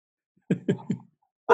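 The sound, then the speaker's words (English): A dog named Max barks three times in quick, even succession at moderate volume, followed after a short pause by a louder, harsher burst of sound. “Stop, Max. Can you just stop?”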